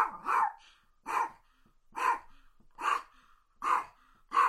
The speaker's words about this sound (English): And let's see if this year we can get Paco to bark for us. Paco, you want to bark? Tell everybody to support their animal shelter.